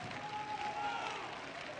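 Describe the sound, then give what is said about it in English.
A church crowd applauds the women who have never cut their hair, a steady, dense wash of clapping that holds at an even level throughout, with a faint high tone briefly sounding over it. “And every man, you ought to give them an applause, because nobody ever looked at you funny walking down the mall in your suit, but they wonder why they got skirts on and why they got long hair.”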